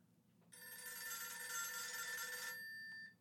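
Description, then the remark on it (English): An old-fashioned telephone bell rings in one continuous, loud, metallic burst lasting about two seconds, then stops abruptly, leaving a brief faint ring tail and a low background hum. “I think of my grandmother's phone.”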